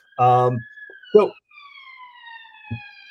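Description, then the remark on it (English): An emergency vehicle siren wails steadily in the background, its tones slowly gliding downward as it passes, while a few brief bursts of voice break in over it. “That sounds like an American siren.”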